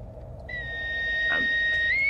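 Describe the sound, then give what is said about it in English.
A whistle is blown to summon a companion, in one long, steady, high-pitched blast that holds its tone and lifts slightly in pitch at the end, sounding alone over a low background hum. “I blow the whistle and I wait for Grimes to turn up.”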